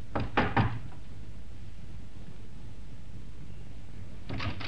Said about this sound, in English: The lock on the door fascinated him. The urge to try out the key in his pocket was almost overwhelming. But instead, he knocked.